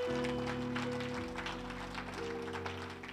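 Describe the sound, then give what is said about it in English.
A crowd claps together for the Lord Jesus in quick, dense, loud bursts over sustained keyboard chords that shift partway through. “Clap for the Lord Jesus.”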